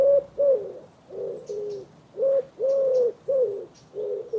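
Pigeons cooing in a steady run of soft, low, throaty phrases, about eight in quick succession, with a faint hiss of background behind them and no talking.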